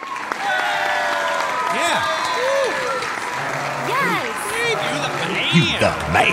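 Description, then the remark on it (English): A crowd applauds steadily for several seconds, the clapping dense and unbroken, while sliding whistles and whooping cheers rise and fall over it, applause for a tier 4 patron named Steve Strickland. “Let's hear it for Steve.”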